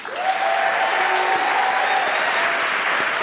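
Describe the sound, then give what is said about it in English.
The audience of the show Wait Wait... Don't Tell Me applauds steadily as guest Nick Kroll is welcomed, a dense wash of clapping that holds at an even loudness for the full few seconds, with a faint whistle-like tone briefly riding above it. “I'm holding for applause.”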